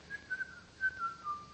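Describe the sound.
A man with his hands in his pockets whistles casually, a few short notes sliding gently downward in a loose, unhurried tune, fairly soft and with no talking.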